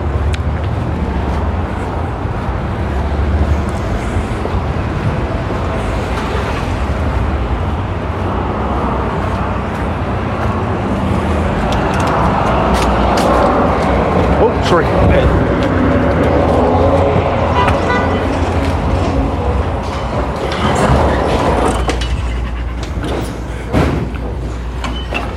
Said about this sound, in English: Busy here today. A lot of pickup trucks because it's Sault Ste. Marie and that's what people drive here.